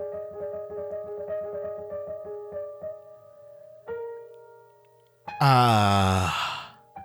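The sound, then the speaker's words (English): A low, steady pulsing hum gives way to a single loud, deep breath from something very large, a rasping exhale that swells suddenly and then drops away, heavy. “I can hear, for all the world, it sounds like something very big breathing.”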